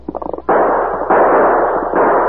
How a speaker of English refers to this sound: He fired several more shots over his shoulder while retreating at top speed. His bullets glanced off the rock, kept the gunmen from exposing themselves to shoot back.